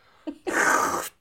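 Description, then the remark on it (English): A voice imitates slurping coffee: a short soft catch, then a sustained airy, hissing slurp lasting about half a second before cutting off. No words are spoken. “Slurping.”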